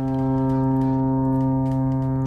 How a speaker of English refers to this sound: Oh, your foghorn there, Captain.